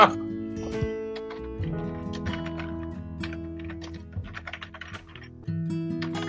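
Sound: computer keyboard typing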